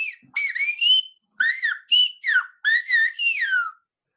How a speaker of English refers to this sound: it's taught in Canary Island schools still. It's a compulsory subject in schools. You have to learn how to whistle the language. And it's you can hear it here.